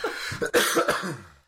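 A few harsh coughs in quick succession, each a loud breathy burst, with a rough throaty rasp trailing off at the end. No one speaks.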